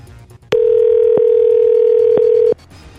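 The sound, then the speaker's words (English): A steady, loud telephone dial tone hums for about two seconds, punctuated by a few sharp clicks, then cuts off abruptly. No one speaks. “Do you really want to count that as a phone call?”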